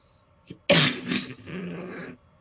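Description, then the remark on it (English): A single loud sneeze: a short breathy intake, then a sudden explosive burst that trails off over about a second and a half. No one speaks. “Bless you. Excuse me.”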